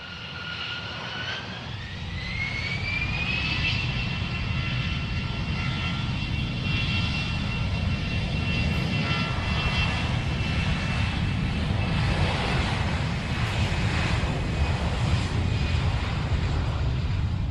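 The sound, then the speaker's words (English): A loud low-flying aircraft engine roars steadily for the whole stretch, a dense low rumble with a high whining tone that rises in pitch early on, then holds as the plane passes. “I know, these low-flying aircraft.”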